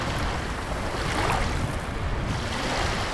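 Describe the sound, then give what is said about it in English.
Steady wind buffets a boat on a lake while waves slosh and splash against its hull, a continuous rushing wash of water and gusting air, fairly loud with no voices. “The disciples were enjoying the ride, but as the boat got further into the lake, the wind began to blow and the boat rocked a bit more. The disciples started to see waves appear in the water.”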